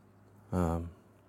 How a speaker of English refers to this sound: Sorry, I have to clear my throat because I haven't really been talking a lot today.